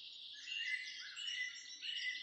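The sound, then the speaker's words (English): A dense chorus of many birds singing and chirping at once, high-pitched and continuous, with overlapping calls and no voices, heard in 2020 during the COVID-19 lockdown without vehicle noise. “In 2020, as we enclosed ourselves to protect ourselves and others from the ravages of COVID-19, I noticed for the first time in a long time the resonant chorus of birdsong.”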